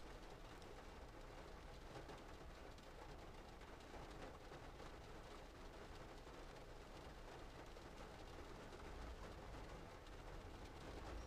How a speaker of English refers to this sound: I want to figure out what the best way is for me to capture this rain or use this rain in an artistic way.